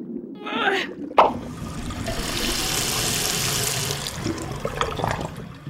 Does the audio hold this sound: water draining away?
yes